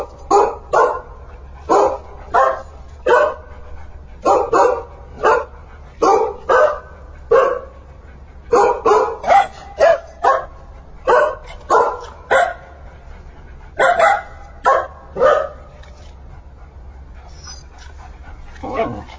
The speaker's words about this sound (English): here we have a group of dogs singing Happy Birthday.